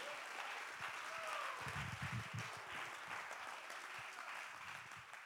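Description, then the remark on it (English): An audience claps their hands to the Lord in a dense, continuous patter that fills the whole stretch, steady and moderately loud, with faint voices murmuring underneath. “Come on, let's clap our hands to the Lord.”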